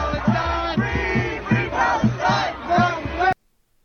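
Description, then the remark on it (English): Loud crowd of protesters at the White House fence, waving the Palestinian flag and climbing the fence while Secret Service yells at them to get down, shouting together in a rhythmic, repeated chant, voices rising and falling in steady bursts before cutting off abruptly. “Waving the Palestinian flag, climbing the fence, while Secret Service yells at them to get down.”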